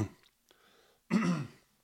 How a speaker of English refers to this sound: Yes, very professional, coughing into the microphone. I have the ability to mute my voice and not have that happen, but then it does this.